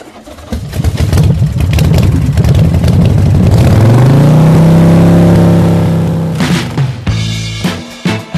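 A loud motorcycle engine revs up, its pitch climbing steadily to a sustained high roar before dropping off, followed by a few sharp throttle blips. No one speaks.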